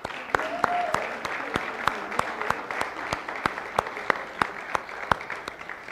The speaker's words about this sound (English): Let's clap for them.